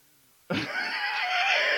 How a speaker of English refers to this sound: This creature screams in such a horrendous, horrible, awful noise. The clash between the beautiful, like, chiming of angels of this light beam coming in just becomes like an absence of all hope, total despair.